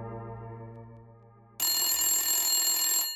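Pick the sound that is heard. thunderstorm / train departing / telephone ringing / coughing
telephone ringing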